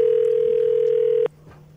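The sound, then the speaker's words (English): A telephone call ringing on the line: one steady electronic tone holds for just over a second, then cuts off, leaving quiet line hiss. No one speaks. “Get Chris Sims on the phone.”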